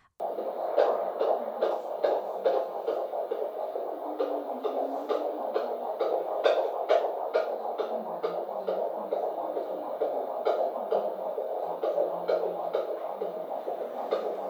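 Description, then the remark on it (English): A baby's fetal heartbeat at 148 BPM on an ultrasound Doppler monitor, recorded on a phone: rapid, steady whooshing pulses, about two or three per second, over a constant muffled hum, with no talking. “That was our baby's heartbeat you just heard there. 148 BPM.”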